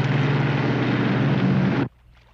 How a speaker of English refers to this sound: They're showing this super, super 70s, like, gold-plated speedboat. Oh man, they are cruising, and oh my gosh.